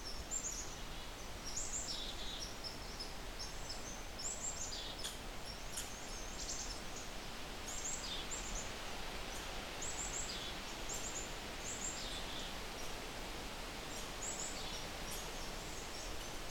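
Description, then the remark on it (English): An angry red squirrel chatters in a forest, giving repeated bursts of sharp, high chirring calls throughout over a steady background hiss. “I also see an oven bird in front of me. Not saying much though. Not with this red squirrel.”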